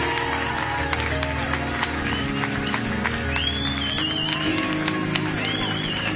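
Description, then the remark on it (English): A crowd claps hands loudly and steadily, a dense wash of rapid overlapping claps with scattered cheers and whistles rising above it. “Why don't we really clap our hands like we're winners here tonight?”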